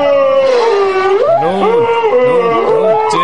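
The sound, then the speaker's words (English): A man on a small boat in the middle of the Pacific Ocean sings in long, wavering, howl-like notes that slide up and down, blending with moaning calls of whales. Loud and continuous, with no talking. “… singing with the whales.”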